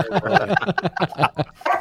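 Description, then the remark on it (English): Dogs bark in a rapid, uneven string of short, yappy barks, fairly loud, with no one talking over them. “So, and my dogs are barking, so I'm going to go and remove one of them.”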